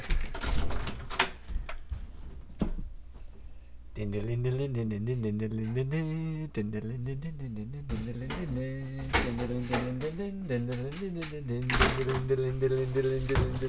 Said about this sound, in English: Okay. I think I took out the door. Oh, but... yeah, no. Took out a door. Phone went down. Door went down.